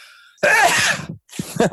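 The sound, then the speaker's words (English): A loud sneeze, caused by cat allergies, bursts out in a long noisy blast, then a shorter second burst follows after a brief pause. “I'm going to sneeze.”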